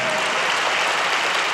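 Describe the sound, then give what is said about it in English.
A church audience claps steadily to thank God, a dense, continuous wash of many hands with no single claps standing out, loud and sustained throughout the short stretch. “Come on, let's clap one more time and thank God.”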